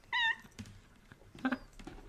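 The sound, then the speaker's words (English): A cat lets out a short, high meow, followed a moment later by a briefer, softer mew against quiet background noise. “Oh my word, the cat.”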